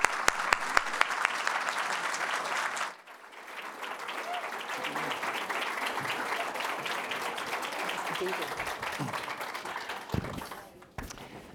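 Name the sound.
audience applause welcoming speakers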